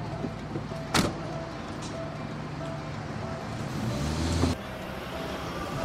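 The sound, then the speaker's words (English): A car door thuds shut over a steady idling engine, then the engine swells as the car pulls away, ending with another sharp thump. “Get in and shut the door, lunchbox.”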